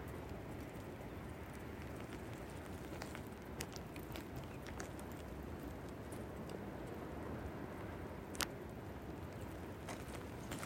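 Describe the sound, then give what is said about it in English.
Steady, roaring wind of a snowstorm fills the whole clip, a dense rushing noise with scattered sharp ticks and crackles, one louder snap near the end. “Just breathing in the swirling winds, the snow.”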